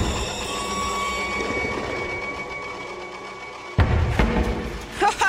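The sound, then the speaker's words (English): A cheesy horror-movie jump scare effect: a low, droning rumble with thin whining tones builds tension, then a sudden loud crashing stinger hits, followed by a couple of shorter jolting bursts. “Number 4, the cheesy jump scare sound effect they put in every lazy horror movie these days.”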